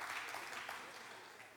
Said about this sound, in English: Why do you obtain, yeah, you can clap for that, that's fine. It's another layup.